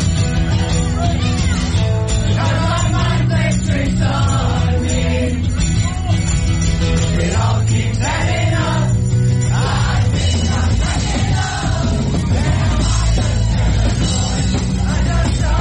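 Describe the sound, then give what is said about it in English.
A loud, dense wash of live rock music with many voices singing along together in the Rockefeller Center subway station during the commute, steady and full throughout with no pauses. “It sounds like the whole subway station is singing along with them.”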